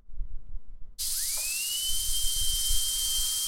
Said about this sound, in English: Is it a... Okay, it's either a hairdryer, like in the salon, or a drill. Neither? It's a drill, but it's a certain kind of drill.